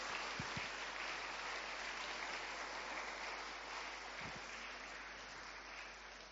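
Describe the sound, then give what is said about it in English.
A large crowd applauds steadily on Easter morning, a dense wash of clapping that holds at an even level throughout, with no voices standing out. “Let's give these guys a massive round of applause”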